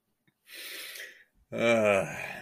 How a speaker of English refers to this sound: But what I'm doing now is I'll sit and try and awaken my body a little bit. Oh, God, I can't stop yawning.